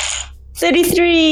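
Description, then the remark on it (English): A short burst of hard, rattling clatter like dice tumbling across a table, followed immediately by an excited voice calling out loudly. “Man, you're rolling like crazy today. Yay! Somebody's dice are finally behaving themselves.”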